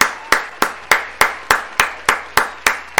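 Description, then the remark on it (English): A round of applause in the form of steady, evenly spaced hand claps, about ten sharp claps at a brisk regular rhythm, each with a short ringing tail, with no voices. “So a round of applause for, you know, y'all too.”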